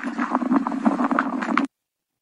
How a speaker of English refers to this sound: You can hear her feet, a sound that many Canadians know so well. You hear the crunching of the snow as she walks, which always tells you it's cold.